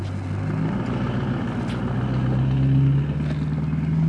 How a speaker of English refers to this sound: Loud ass truck, for real, for real.